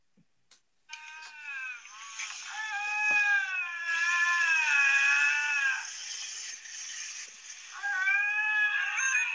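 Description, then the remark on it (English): Two lynx caterwaul as they get ready to mate, in long, wavering, overlapping yowls that rise and fall almost without pause, loud, with a brief break before the howling starts again. “These are two lynx getting ready to go at it.”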